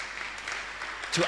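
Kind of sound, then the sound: crowd, audience clapping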